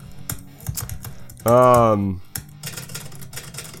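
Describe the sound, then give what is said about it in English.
An old typewriter clatters with quick, irregular key strikes, broken midway by a loud half-second tonal ring before the crisp tapping resumes. “Old school typewriter.”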